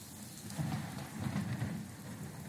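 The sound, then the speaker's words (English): Steady, dense rain hisses throughout while a low, rolling thunder rumble swells underneath, peaking twice before easing, on a stormy day in a swamp; no voices are heard. “Very stormy day out here in the swamps.”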